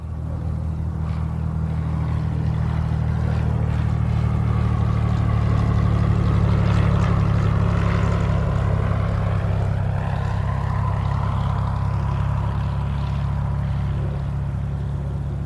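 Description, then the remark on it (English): A candidate's small chartered propeller airplane taxis into a tiny terminal building in Spencer, Iowa, its engine a loud, steady droning hum with a faint shifting whine above it, continuous throughout with no voices. “The candidate's small chartered airplane taxis into a tiny terminal building in Spencer, Iowa.”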